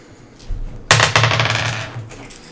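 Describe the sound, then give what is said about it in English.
A soft thud, then dice clatter and tumble in a bright, rattling burst that lasts about a second before settling, rolled for an attack roll in a tabletop game. No one speaks. “All right, make an attack roll.”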